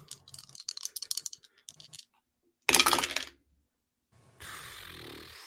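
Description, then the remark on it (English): Dice rattle in a cup or hand with quick clicking bursts during a tabletop role-playing game roll, then tumble onto a table in one loud clatter, landing on double ones, followed by a softer rustling noise. “Double ones on the dice, and then a plus one because of game face makes it a right.”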